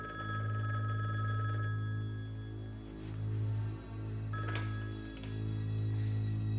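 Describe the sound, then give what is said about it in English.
A telephone bell rings steadily in long, loud bursts separated by brief pauses, with a low humming undertone and no one speaking. “And while he's out of the room, the phone rings.”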